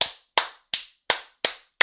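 A single person clapping alone, six sharp, crisp claps at a steady, even pace, each one snapping out and fading quickly, with no talking.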